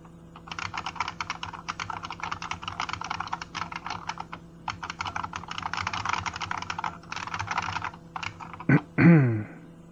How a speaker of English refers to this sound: Not trying to tell you what to do or anything, of course, but, you know you're typing in the text editor, right?